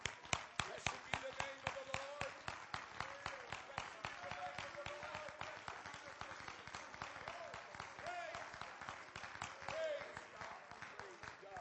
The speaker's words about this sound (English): Clap your hands to the Lord and let's give Him praise one more time.